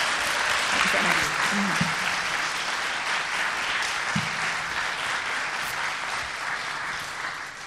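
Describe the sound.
A crowd claps steadily for several seconds, a dense, even patter of many hands that holds at a fairly loud level throughout, with faint voices mixed underneath.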